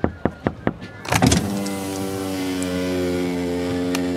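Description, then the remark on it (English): Four sharp knocks on a police car window in quick succession, followed by the steady whirring hum of an electric window motor rolling the glass down, fairly loud. “Knock on that car window there”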